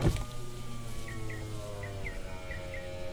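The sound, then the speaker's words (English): The window of an armored vehicle hums steadily downward with a low motor whir that cuts off partway through, while a few short bird chirps repeat faintly in the background. No one speaks. “The colonel scanned the surrounding bushes before lowering his window.”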